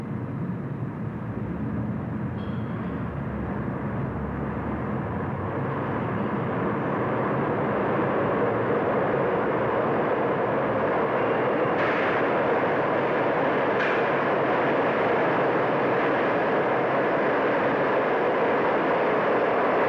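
A subway train roars steadily through a station for the whole stretch, a loud, continuous rumble with a couple of brief metallic clatters partway through and no voices.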